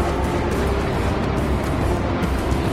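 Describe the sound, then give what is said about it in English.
A loud, sustained engine roar fills the whole stretch, a dense, steady rumble of a powerful Ford GT40 race car running hard, with no voices over it. “The GT40 is furiously fast.”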